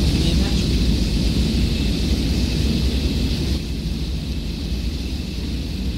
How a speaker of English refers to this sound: Train now arriving on platform 2 is the 1840 from London. Mind the doors, please. This is Sternbridge.